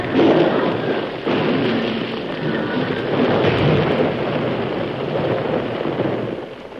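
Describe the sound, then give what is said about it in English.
A loud, sustained roaring rumble fills the whole stretch, like a mine blast set under a large overhang followed by several thousand tons of rock and ice crashing down in a rockslide, dense and continuous with no voices. “You're running right in the path of the explosion.”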